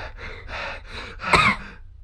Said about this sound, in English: Stop breathing in my face. I don't know why. Stop breathing in my face. Get out of my face.